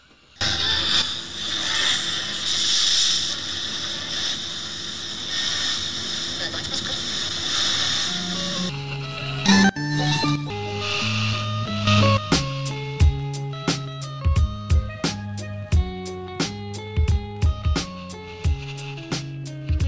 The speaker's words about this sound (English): Man, honey, you know we're just going to be flipping through static the whole time, man.